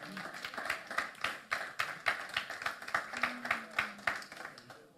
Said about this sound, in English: Oh, keep your claps. Who am I talking to for real in this room?